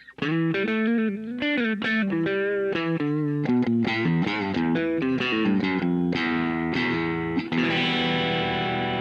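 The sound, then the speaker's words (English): An electric guitar played dry through an amp profile, with no effects, compressors or pedals, has a crunchy, overdriven tone and plays a quick riff of chords and single notes, ending on a ringing sustained chord. Loud, no talking. “So these are dry, no effects, no compressors, pretty much nothing on, no effects or stomps or none of my pedals.”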